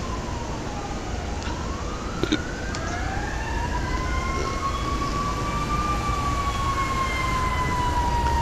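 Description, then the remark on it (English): A fire engine siren of the arriving fire department wails with rising and falling tones over steady traffic rumble, growing stronger as it approaches, with overlapping siren sweeps and no talking. “Here come the fire department.”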